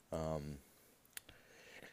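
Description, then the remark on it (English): A brief voiced sound opens, then two or three soft, sharp pen clicks follow in quick succession as a person plays with a pen, quiet. “Sorry if you can hear that clicking. I'm playing with a pen.”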